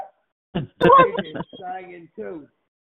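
A dog barks and yelps in a few short, tonal bursts, moderately loud, with brief pauses between calls, at Christmas.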